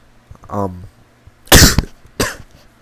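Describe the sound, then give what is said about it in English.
Two loud, harsh coughs, about a second apart, preceded by a brief voiced throat sound. No one speaks. “Sorry if the coughs are making me, like, deaf.”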